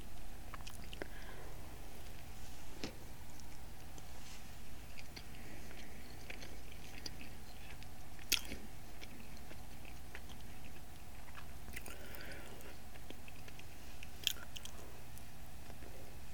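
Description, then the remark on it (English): Chewing of a chocolate cake donut, steady moist mouth sounds with occasional sharper clicks and smacks, continuing for several seconds with no talking. “one is actually a cake donut with chocolate on it.”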